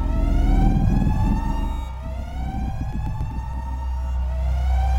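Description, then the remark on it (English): Loud, blaring alarms sound continuously aboard a craft hitting turbulence as its walls shudder, with steady high-pitched siren tones held above a deep throbbing rumble that pulses beneath them throughout. “Might have been the ear-splitting alarms or the way the walls were shuddering.”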